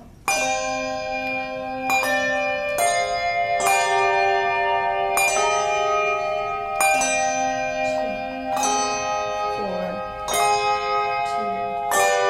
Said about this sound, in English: A few of them are in need of new handles and other minor repairs, which is to be expected after half a century in the basement. But when these bells make their 21st century debut in the fall